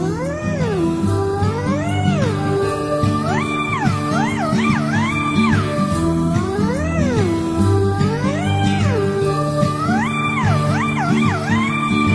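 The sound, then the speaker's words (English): A black cat meows repeatedly, a string of drawn-out, rising and falling cries coming close together and loud, over a steady musical backing with no talking. “Oh no, it's a black cat.”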